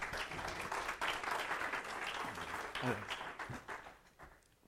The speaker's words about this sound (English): So if you could at this time, let's clap our hands and make Brother Steve feel welcome.